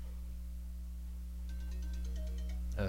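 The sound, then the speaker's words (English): A phone ringtone starts partway through, a quick run of repeating high electronic notes over a steady low hum, with no one speaking. “Could you please put your phone on silent, ma'am?”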